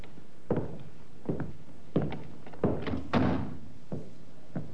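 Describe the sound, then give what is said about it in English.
A sergeant tries the unlocked door of Colonel Reed's place of business and pushes it open, giving a series of dull thumps and clunks at uneven intervals, with one heavier knock in the middle and no voices. “The sergeant tried the door. Not locked, sir.”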